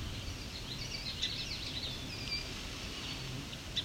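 A song sparrow gives a few sharp, isolated tick-like calls, about three spaced seconds apart, fairly faint against a steady hiss of outdoor background noise.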